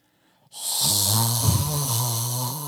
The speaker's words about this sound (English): One night, I woke up to someone breathing loudly.